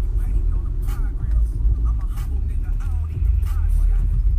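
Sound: car driving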